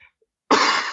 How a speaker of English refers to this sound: I hope you don't mind me coughing on this thing. It will be harder to go a whole podcast without coughing.